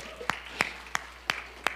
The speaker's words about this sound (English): I'm glad you were applauding for that, but that's me as well, you know.